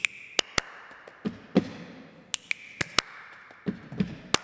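Sharp hand claps, part of a counting rhythm exercise in a music lesson, ring out about a dozen times in uneven groupings, some crisp and bright, others duller, over a faint steady high-pitched tone, with no voices.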